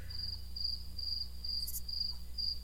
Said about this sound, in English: It's fun because I'm sure that they can't hear this, but I can hear actual crickets outside. I was going to say there are plenty of crickets outside.